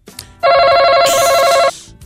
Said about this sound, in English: One hand behind your back, one on the buzzer